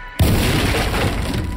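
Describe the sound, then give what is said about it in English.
A sudden, loud explosion blasts a door open in a room with a workbench, a deep booming blast followed by a steady roar of crashing debris as tools fall from shelves and clatter to the ground, lasting over a second. “An explosion blasted the door open.”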